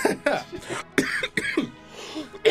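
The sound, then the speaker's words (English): A person coughs repeatedly in a harsh fit of several bursts, with brief gasping pauses between them and no other sounds. “Aren't we supposed to have cough buttons or something?”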